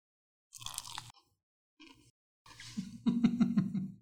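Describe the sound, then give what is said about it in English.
A crisp bite followed by a brief pause, then loud, rapid crunching chews with a steady rhythm, crackly and bright, with no talking over it. “Quite the crunch you have there”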